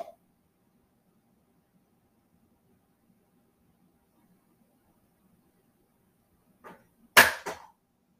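After a long stretch of near silence, a cat knocks small plastic Guardians of the Galaxy Pop figures off a shelf: a light tap, then a sharp, loud clattering thud followed by a quick second bump.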